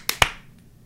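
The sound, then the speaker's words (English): A group tries to clap together after a countdown of one, two, three, but the claps land out of sync: two sharp, bright claps in quick succession, then a much fainter one trailing after, with no talking. “I heard four distinct claps.”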